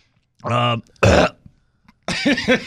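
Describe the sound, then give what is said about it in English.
A person makes a deliberate fake choking noise, done on purpose and not a cough: a strained, croaking gag followed by a harsh raspy burst, then someone starts talking. “No, that was on purpose. That wasn't a cough. That was just doing what the Clippers usually do.”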